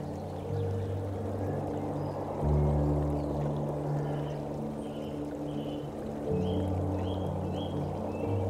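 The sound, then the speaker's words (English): Waves ebb and flow, water washing and swelling gently over a steady low hum, with faint high chirps drifting in now and then; no one speaks. “Waves ebb and flow.”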